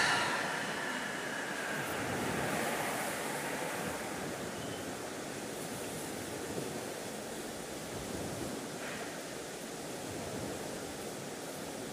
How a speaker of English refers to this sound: Stillness appearing between the sounds of the traffic, revealing the sound of a wave crash.